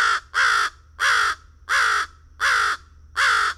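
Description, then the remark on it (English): An American crow gives a series of about six hoarse, harsh caws in a steady rhythm, loud, with brief pauses between calls and no other sounds. “The American crow's hoarse caws.”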